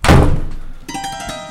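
A door swings shut inexplicably with one loud, heavy thud that booms low and fades over a moment, followed by a softer, lingering resonant ringing. No one speaks.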